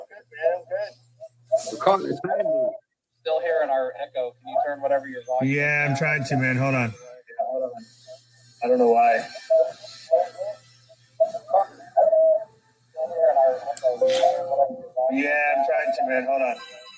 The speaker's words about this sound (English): Is that better? No, I'm still hearing it. Yeah, hold on. Let me put some headphones on. Maybe that'll work. That's weird hearing myself like 5 seconds after I say something.